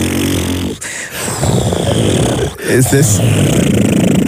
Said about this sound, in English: It's not a connection flight? No, what was it? Volcano erupting. Okay, you know what? I had plane taking off, plane landing, and volcano. They all sounded the exact same.